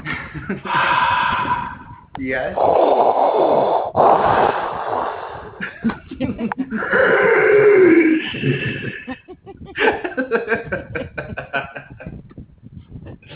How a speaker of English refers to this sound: I hear someone breathing.